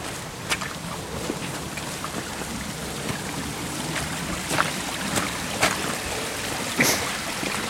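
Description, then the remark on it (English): A small stream flows steadily with a continuous trickling, babbling wash, broken by a few brief brighter splashes and drips; no voices. “It's coming to a little stream.”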